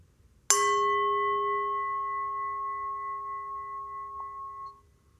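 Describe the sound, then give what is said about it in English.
A single gong strike, made to start a guided meditation session, opens with a sharp metallic hit, then rings on in steady, clear tones that fade slowly for several seconds before cutting off. No one speaks. “I will hit the gong and let's start the meditation.”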